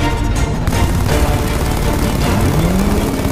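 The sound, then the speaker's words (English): Loud, sustained machine gun fire from twin machine guns on the Batmobile, firing on the shuttered steel doors of a factory: a dense, rapid stream of rattling bursts with a heavy low rumble underneath, continuing unbroken for the whole few seconds with no voices. “Twin machine guns emerged from open flaps of the sleek car and opened fire on the shuttered steel doors.”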